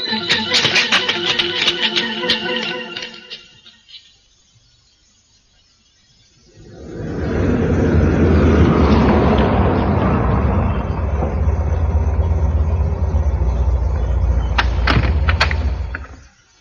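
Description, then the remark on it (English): Busy clattering activity fades into a short silence, then a car engine roars and holds a loud, steady rumble as the car drives away, with a car door thud or two along the way. “Come on, back to the car.”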